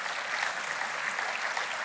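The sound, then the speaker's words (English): Steady applause from a crowd, many hands clapping at once in a dense, continuous patter at moderate volume with no voices on top. “Now, that's right, clap, because that's good.”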